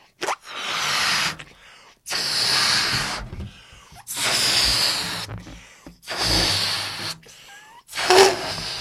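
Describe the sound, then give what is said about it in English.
Someone blows up a balloon by mouth to about 70% capacity: five long, forceful, breathy puffs, each about a second long with short pauses between them, and no talking. “So I've got a balloon in my hand. I'm blowing it up.”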